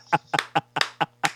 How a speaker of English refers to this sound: Round of applause. Yes, round of applause for …. …. Rest in peace, ….